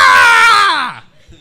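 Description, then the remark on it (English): A loud human scream, strained and harmonic-rich, sustained for about a second before its pitch slides downward and cuts off into near silence. “And that's what that scream looks like.”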